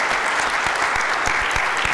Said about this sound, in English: deserves another round of applause. I mean, that was just remarkable.